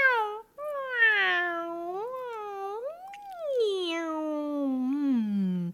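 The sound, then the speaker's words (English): A person scrunching up their face imitates a cat, making long, wavering meows that rise and fall in pitch. The sound is fairly loud, with one drawn-out yowl blending into the next. “And try scrunching up your face and making cat noises.”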